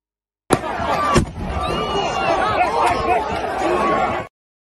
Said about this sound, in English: Here's the police firing directly into the crowd. It's about chemical munitions.